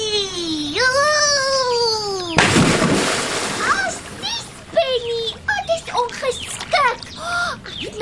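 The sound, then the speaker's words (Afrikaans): A loud splash of someone jumping into a swimming pool, roughly a second of churning water after a long wailing cry, followed by high-pitched chattering voices. “dis vreeslik ongeskik om iemand langs die swembad nat te spat wanneer jy in die water spring.”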